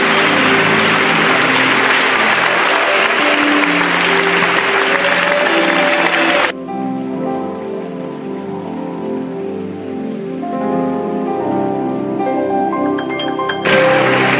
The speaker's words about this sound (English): Come on, clap for Jesus.